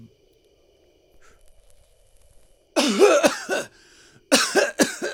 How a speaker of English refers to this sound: No, well, that was actually less coughing than I expected to hear. You're a natural.